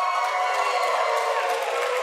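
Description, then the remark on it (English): An audience cheers to vote for the option "Deep Home" over "Glane", a steady, continuous roar of many overlapping voices, loud and unbroken for about two seconds with no single voice standing out. “Let's cheer for Glane or the other one, Deep Home.”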